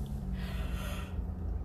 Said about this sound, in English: Excuse me for the yawn.